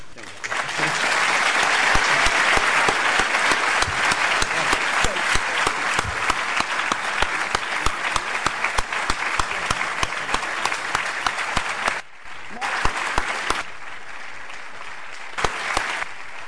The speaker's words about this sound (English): The longer you clap, the less time we will have to listen to Professor Yunus.